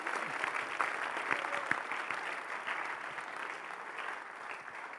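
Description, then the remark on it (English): An audience claps steadily for about five seconds, a dense, even patter of many hands with no voices breaking through, applauding a first-time attendee who comes up to receive a gift. “So, come on, let's give her a clap.”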